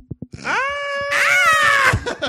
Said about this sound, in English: So exciting. Scream, girl.